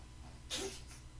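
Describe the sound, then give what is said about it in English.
A cat named Felix coughing up a furball: one short, faint, breathy hack with a hissing, wheezy edge, followed by a softer trailing puff, and no talking around it. “That's Felix behind us who, I'm not sure what he's doing. Coughing up a furball.”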